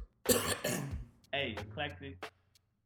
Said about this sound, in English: pardon me, I'm gonna cough.